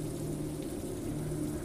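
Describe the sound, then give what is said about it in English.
Steady, heavy rain pours down in a continuous, even hiss with a deeper rumbling wash underneath, falling harder as the temperature suddenly drops, holding a constant loudness throughout and with no voices present. “The temperature drops quite suddenly, and the rain begins to fall harder.”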